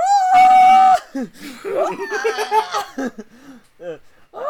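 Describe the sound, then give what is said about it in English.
A person imitates a shrill, monkey-like scream, one loud sustained shriek lasting about a second, followed by laughter and excited chatter from people. “It's like a monkey scream.”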